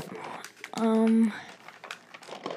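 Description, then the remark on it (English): Crackly crinkling of wrapping paper being handled on a rather heavy, rectangular gift, the paper printed with penguins, Santa, snowmen, reindeer and "ho ho ho", continuous and uneven, with a brief loud vocal tone breaking in near the start. “It's making a lot of noise. What's the wrapping paper look like?”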